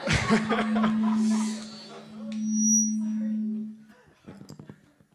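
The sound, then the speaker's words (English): A steady, droning microphone feedback tone rings through the room for several seconds, with a thin high whine above it, as an audience member starts to speak at a panel discussion, while people chuckle and laugh in the background. “I would also echo... What? Literally echo.”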